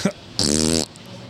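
A single loud, buzzy fart noise lasting about half a second, with a raspy, vibrating tone, heard on its own after a brief short sound at the start.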